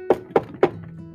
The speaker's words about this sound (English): Then, they heard a knock on the door.